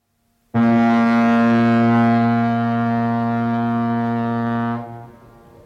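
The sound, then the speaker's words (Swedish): The horn of the steamboat Oihonna, heading west toward Stockholm, gives one long, loud, steady blast with a deep, rich harmonic tone, holding for about four seconds before cutting off and fading into a faint rumble. No one speaks. “Toves första stora utlandsäventyr börjar på ångbåten Oihonna som tuffar västerut mot Stockholm.”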